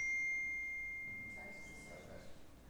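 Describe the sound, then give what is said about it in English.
A phone notification sound: one clear, high electronic chime held for just over a second before cutting off, followed by faint, muffled background sound. “Some of you may have even reached for your phone just now thinking, your phone went off.”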